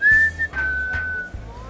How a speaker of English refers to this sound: I can whistle and get Festus to come. All the other seagulls will be flying around, and I'll whistle. I'll go...